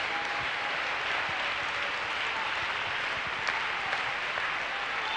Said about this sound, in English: Let's just clap our hands and give him praise right now.